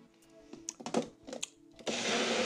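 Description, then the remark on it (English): A few sharp clicks and knocks of a cup being fitted, then a Magic Bullet personal blender roars to life with a loud, steady, high-pitched whir as it blends crunchy peanut butter, organic banana and ozonated water into a smoothie. “Crunchy peanut butter, organic banana, ozonated water, put into the magic bullet.”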